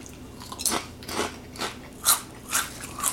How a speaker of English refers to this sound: So here we go. How do they taste? How spicy are they? 3, 2, 1, taste test. I'm going to eat another one. So I'm definitely getting a crunchy, oily taste, as you might expect.